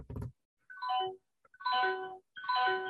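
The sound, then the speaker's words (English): A 1,100-watt microwave oven chime sounds three times in quick succession, each a bright electronic tone sweeping downward, fairly loud after a brief thud at the start. “That's my microwave. Bling, bling, bling.”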